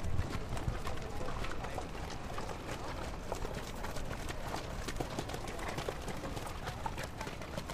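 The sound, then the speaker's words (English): Horses clip-clop past at a steady walking pace along a street in medieval Dublin, their hooves knocking clear over a dense, busy street bustle with a murmur of voices underneath. “While there's no cars, there's equally dangerous horses coming by.”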